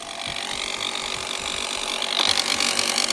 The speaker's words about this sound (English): So it has an air compressor in it, so you can pump up your car or your bike tyres with this